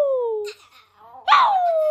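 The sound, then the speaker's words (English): A person lets out two drawn-out, howling cries that imitate a dog, each sliding downward in pitch, with a short quiet gap between them. Loud. “Let's give a howl for Jason Nelson.”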